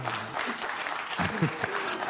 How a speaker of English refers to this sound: Let's see who's clapping there.